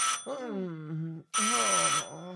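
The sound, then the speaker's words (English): A telephone rings loudly in two bursts, with a brief pause between them, over a sustained, wavering tonal sound. “get the phone. I'm too little to answer the phone.”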